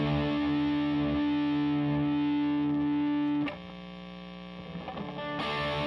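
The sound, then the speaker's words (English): A song plays: a heavily distorted electric guitar holds a loud, buzzing chord for a few seconds, then shifts to a quieter droning chord that swells back up at the end. No one speaks. “we are putting this out there, so here's … by …. Yeah. Enjoy the song.”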